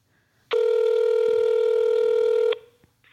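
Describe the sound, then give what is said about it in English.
A landline telephone being dialed, heard as one loud, steady electronic tone that holds for about two seconds, clear, with no voices around it. “This is their landline.”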